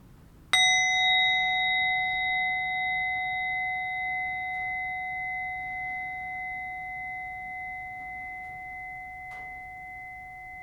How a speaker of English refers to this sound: And we'll complete our meditation with the sound of the bell.